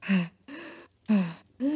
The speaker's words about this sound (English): I'm okay. We're okay. I'm okay. We're okay. I'm just doing, like, breathing exercises.